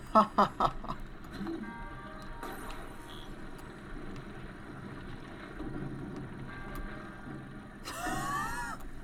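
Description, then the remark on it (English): Mechanical gears of a Hylian clock tick and clank in a video game, with a few sharp metallic clicks at the start over a steady low rumble, then a brighter shimmering sound near the end. “Can you stasis the gears in the middle and then it freezes the stuff?”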